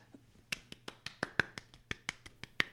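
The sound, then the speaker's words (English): One person claps alone, about ten sharp, crisp claps in a slightly uneven rhythm, fairly quiet, with a faint low hum underneath and no voices. “I love your full-blown round of applause.”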